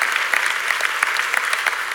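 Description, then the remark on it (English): An audience claps steadily, a dense patter of many hands at a fairly loud, even level, with no one speaking over it. “Some of y'all who aren't clapping are like, I'm not sure.”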